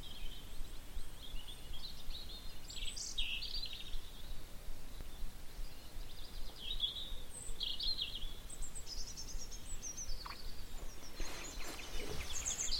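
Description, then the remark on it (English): Robins singing in a dawn chorus in a misty wooded valley, with many thin, high warbling phrases overlapping over a steady low outdoor hiss. No one speaks. “It was mostly robins. It was nearly all robins at the beginning.”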